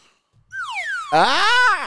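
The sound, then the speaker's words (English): A slide whistle glides downward in pitch, followed by a louder, buzzier tone that rises and then falls, like a comic cartoon-style sound effect with no talking. “You give the slide whistle”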